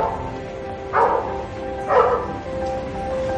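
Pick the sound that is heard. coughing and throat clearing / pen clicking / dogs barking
dogs barking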